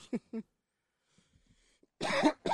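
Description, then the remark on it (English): Two quick, short coughs, a brief quiet pause, then a louder, harsher burst of coughing. “My fucking cough is killing me.”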